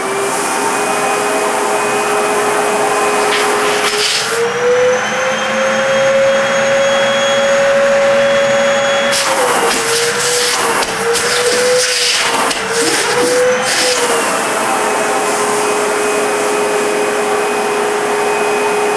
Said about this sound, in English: This is the Sandia Raven 10-quart backpack. So, find the switch here. The switch on this one is actually, too, it's on the vacuum itself. It's not on a... it's on a separate switch box that attaches. All right, here we go.